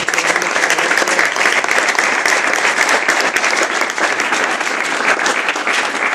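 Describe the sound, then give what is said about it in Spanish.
Loud, sustained applause from a large crowd, a dense steady patter of many clapping hands that holds at full strength for about six seconds without fading. “¡Fuerte aplauso!”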